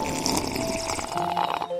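A long, steady slurp of a McCafe iced coffee from McDonald's drawn up through a straw, a gurgling, airy sucking sound that runs unbroken for over a second before cutting off abruptly.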